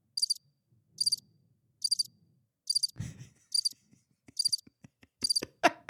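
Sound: crickets chirping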